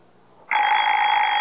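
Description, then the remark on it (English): A Baby Ben wind-up alarm clock, which needs no electricity, bursts into a loud, continuous metallic ringing after a brief quiet moment, its rapid bell clatter holding steady and bright until the end, with no talking. “Baby Ben's our alarm clock, honey. It never forgets to get us up.”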